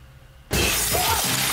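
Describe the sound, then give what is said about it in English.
A glass pane shatters abruptly after a moment of quiet, a loud burst of breaking glass with bright tinkling shards continuing to ring and scatter until the end. “I feel like windows don't usually explode anymore”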